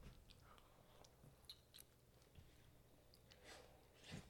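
Wet chewing of a juicy bite of Campari tomato, with soft crunches and moist smacking sounds coming in irregular bursts, growing a little louder toward the end. No one speaks.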